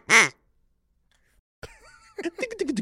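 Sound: duck quacking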